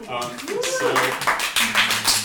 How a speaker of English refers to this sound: That's the biggest round of applause all night.